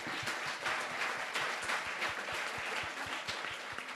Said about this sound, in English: So thank you very much. Please give a big round of applause to all of us.